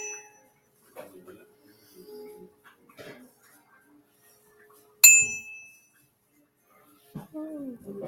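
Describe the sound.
Soft tinkling bell sounds, then one loud, bright bell strike that rings out and slowly fades. A voice murmurs briefly near the end.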